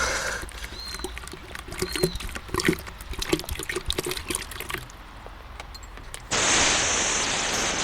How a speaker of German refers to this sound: Das ist doch ein Kanister, oder? Ja, er geht zu den Autowracks, die irgendjemand hier in der Straße abgestellt hat. Oh Mann, er will sie anzünden. Nein. Er gießt das Benzin drüber.